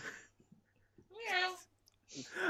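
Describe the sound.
A person imitates a cat with a single drawn-out, rising-then-falling meow in the middle, fairly loud, framed by brief breathy vocal sounds before and after.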